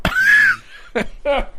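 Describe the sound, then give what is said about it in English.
A high-pitched, strained vocal burst like a wheezy laugh, followed by two short, sharp coughs in quick succession, fairly loud, with no talking. “I'm going to get into a coughing fit.”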